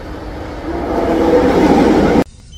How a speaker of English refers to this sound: My train is here.